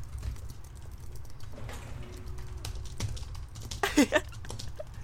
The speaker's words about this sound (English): 3, 2, 1, start typing.